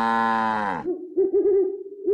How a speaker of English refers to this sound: Knock-knock, who's there? Moo, moo-hoo. Well, make up your mind. Are you a cow or an owl?